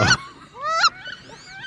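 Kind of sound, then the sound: bird, wood duck calls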